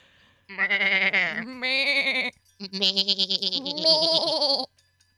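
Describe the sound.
Two long, wavering, loud bleats in a row, like a baby goat crying out; the quivering, voice-like tone suggests a person imitating the bleat.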